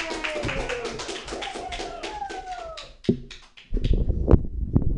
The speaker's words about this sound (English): Paul Sanford, everyone. If anybody remembers him, clap it up.